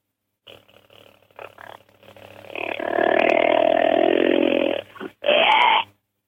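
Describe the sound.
A man's voice imitates a whitetail buck's challenge calls: low rumbling growls building into a loud, sustained roar, then a sharp bark at the end, alone with no talking.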